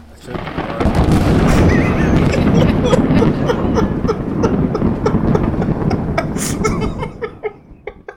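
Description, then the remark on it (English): A loud lightning strike sound effect: a sudden crackling crash swells into a heavy, sustained rumble, then breaks into scattered sharp crackles as it fades over several seconds. “So I was the only one who got this right, and I got lightning struck.”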